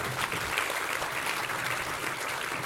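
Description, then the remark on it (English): An audience at a panel discussion clapping steadily to kick off the panel, a dense, even wash of applause that stays at a consistent level throughout with no voices standing out. “Maybe a round of applause to help us get kicked off here.”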